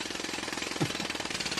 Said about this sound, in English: Matt, cue the jackhammer noises right now.